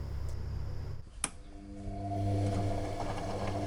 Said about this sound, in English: A washing machine, 70 decibels.